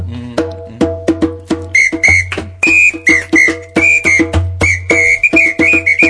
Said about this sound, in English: The samba whistle solo was just ad-lib.